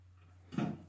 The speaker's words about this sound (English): You shut that door.